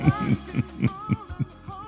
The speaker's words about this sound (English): Do you hear what I hear? Listen to your heartbeat, playing the rhythm to our song.